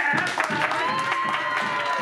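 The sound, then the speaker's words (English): Steady applause from some of a city council meeting audience after a council member's motion, a dense patter of clapping that holds at an even level throughout, mixed with a murmur of voices from the crowd. “As you can hear, it brought applause from some”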